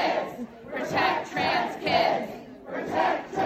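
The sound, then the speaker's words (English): A group of young men shriek and scream together at the person filming them, middle fingers up, in loud, overlapping bursts, rising and falling in several surges with brief dips between them. “Young guys, and they're all focused on the person filming, shrieking, screaming, middle fingers up.”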